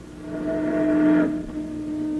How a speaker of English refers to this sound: A steamboat.